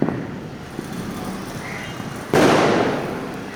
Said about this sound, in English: It might not have been the Argentina-Brazil final of Kolkata's dreams, but when Lionel Messi's men finally lifted the World Cup after a hard-fought, nail-biting match, the city erupted with fireworks as if India had won.